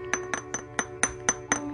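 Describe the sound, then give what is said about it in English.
A glass jar that held pre-rolls is tapped about seven times in a steady, even rhythm, each bright clink ringing briefly over a low background hum. “He had smoked it, but gave me the glass jar because it's glass. Can you hear it?”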